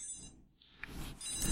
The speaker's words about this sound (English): That's a cell phone. Yeah, you can call on it.